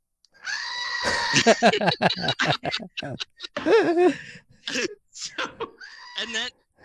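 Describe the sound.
A person lets out a series of loud, quavering screams that mimic a bleating goat, the wavering cries broken by short gaps over about seven seconds.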